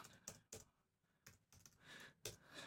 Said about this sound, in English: Can you hear the typing in the background?